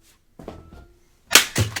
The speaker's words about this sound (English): I was worried that 3DS wasn't hammer resistant.